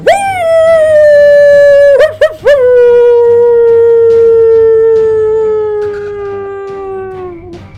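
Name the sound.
wolf howling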